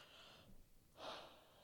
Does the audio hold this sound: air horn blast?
no